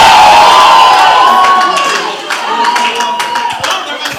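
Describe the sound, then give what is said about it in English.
A loud crowd erupts in shouting and cheering, giving the Lord a shout, voices overlapping in a sustained roar with scattered claps and high whoops throughout, easing slightly midway but staying energetic. “Come on, give the Lord a shout!”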